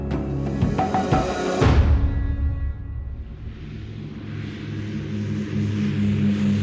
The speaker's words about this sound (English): At 7:15 a.m. on July the 18th, 1936, a small Dragon Rapid airplane takes off from Croydon Airfield, just south of London, England.